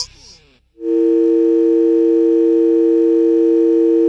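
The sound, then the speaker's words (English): A short muffled burst and a moment of silence give way to a loud, steady telephone dial tone before the first call is played, a continuous mid-pitched hum that holds unbroken for several seconds until the end. “Here's our first sex call.”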